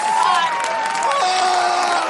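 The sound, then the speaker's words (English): An audience cheers and shouts together in a sustained, loud roar of joy, with high excited voices and whoops blending into a continuous wash of sound for about two seconds. “the audience had erupted into cheers of joy”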